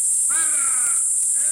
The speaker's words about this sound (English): In turn, listen here as these men from the Jawa people of northern Mozambique make a special honey hunting call, a loud trill followed by a short grunt.